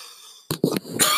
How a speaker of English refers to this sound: That was not a virus cough, man. That was a cough with not enough liquid intake for all the people out there.